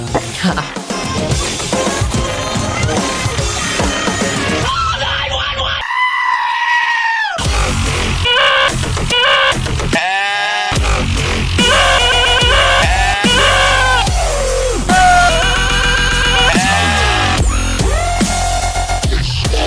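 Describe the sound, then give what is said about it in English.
Several goats bleat and scream loudly, their wavering, strained cries overlapping almost continuously, with only a couple of brief pauses between bursts. “All right, so there are goats here.”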